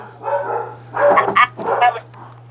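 A dog barks in a quick series of four or five sharp barks, some in rapid pairs, over a low, steady electrical hum; no one speaks.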